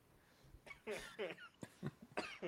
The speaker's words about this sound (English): Everyone's coughing off screen right now.